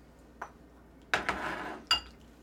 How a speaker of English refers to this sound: So I just take literally, like, a giant scoop here out of it, and we'll put it in the other bowl.